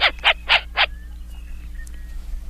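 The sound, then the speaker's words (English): A short-eared owl on Cape Cod gives four quick, harsh barking calls in a rapid series, then falls silent, leaving only a low steady hum and faint background noise. “That would be the short-eared owl spotted down on Cape Cod.”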